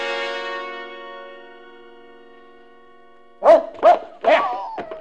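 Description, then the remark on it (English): A sustained musical chord fades away, then a dog named Jeff barks three times in quick succession, loud, with no talking. “Jeff, you fool dog, come back here.”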